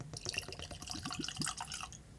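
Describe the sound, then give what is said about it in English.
Indiana bourbon from MGP being poured into a glass, a steady trickle with quick gurgling glugs over about two seconds, with no voices. “So let's go and get that poured.”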